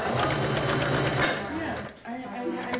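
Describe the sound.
A sewing machine at a workstation, revved up to stitch black canvas fabric printed with skulls, rattles along in a fast, steady stitching rhythm for about a second, then stops as a person begins talking.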